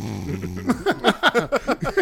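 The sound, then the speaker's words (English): A voice imitates snoring: a low, rumbling drone gives way to a quick, rhythmic run of about seven loud snorting bursts, with no other talking. “And I'm older, so this only means more snores.”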